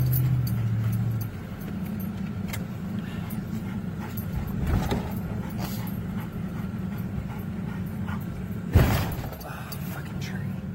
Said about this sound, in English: If you listen closely enough, you can hear the roar of the fire and a whistling, cracking sound of burning power lines.